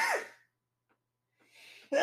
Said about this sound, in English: Well, anyway, good sneeze.